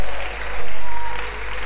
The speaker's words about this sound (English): Oh, if you are clapping, clap well.